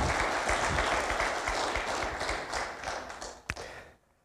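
A church audience applauds steadily, clapping because they sing to God, a dense wash of many hands clapping at once, then a single sharper clap stands out near the end before the applause quickly dies away to silence.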